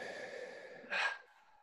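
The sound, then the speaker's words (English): During a breathing exercise, a person exhales audibly, a soft airy breath out that swells into a brief louder sigh before settling back into quiet, even, normal breathing. Solitary, with no talking. “And you come back to normal breathing.”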